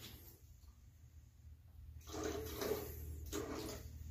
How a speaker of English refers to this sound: We're gonna add a little bit of seltzer water.